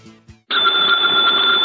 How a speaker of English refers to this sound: Ladies and gentlemen, the ringing of that phone bell means mystery, adventure.